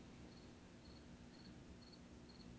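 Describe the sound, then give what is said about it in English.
Crickets chirping faintly in a steady rhythm, short high trills repeating about twice a second over a low background hiss, with no one talking. “Is that literally crickets I'm hearing?”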